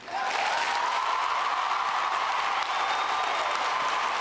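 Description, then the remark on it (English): Sustained applause from a large audience of kids fills an amphitheater, a dense, steady wash of clapping that stays loud throughout with a faint whistle-like tone drifting above it. “For the record, I had to cut off about 30 seconds of applause”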